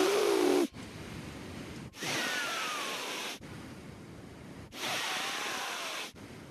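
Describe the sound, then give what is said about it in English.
A voice imitates how a man seated beside the speaker in a movie theater breathed through his nose: loud, hissing inhales and exhales alternating in a steady rhythm, about five breaths of roughly a second each, with no talking. “But the guy sitting next to me was breathing like this through his nose the entire movie.”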